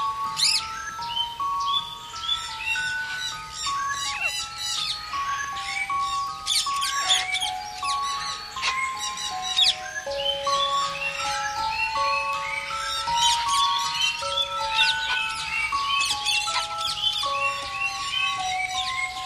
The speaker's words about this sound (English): Listen to the bird sounds especially.